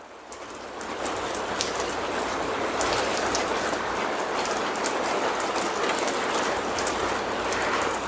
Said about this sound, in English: Now that you are comfortable, relaxed, calm, turn your attention to the sounds that you're hearing. Rain.